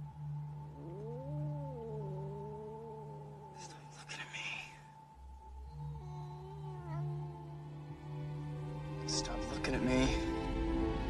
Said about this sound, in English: Clovis can see Charles because he's a cat. They're both cats, essentially. So Clovis can see Charles, and Charles ain't having it. He's just like, stop looking at me, you fucking cat.